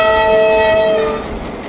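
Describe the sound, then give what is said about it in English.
A diesel locomotive, just put onto the rails, sounds a steady, loud, multi-toned horn blast for about a second over a low mechanical rumble as it rolls along the track, the rumble carrying on more quietly after the horn cuts off. “A diesel locomotive was being lifted onto the track in front of him.”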